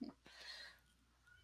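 A kitten that has been shut out of the room gives a short, thin whine from outside the door, muffled and faint, lasting about half a second before fading into quiet room noise.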